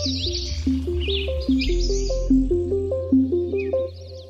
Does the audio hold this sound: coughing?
no